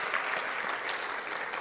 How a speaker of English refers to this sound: And so why don't we just give a round of applause for generically for anyone who is involved in that. Super awesome.